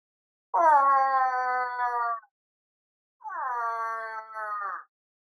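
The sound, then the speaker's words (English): A man standing by a lumber road imitates a cow moose in heat to call moose, with two long, nasal, wavering moans, the first about two seconds and the second slightly shorter, separated by a brief silence. “So we got out of the car, and he does the cow moose in heat sound, which is like this.”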